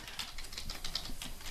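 Rapid, irregular clicking of a computer keyboard as someone Googles what $1 billion in 1916 is worth today, a steady run of light taps with no voices, continuing for the whole stretch.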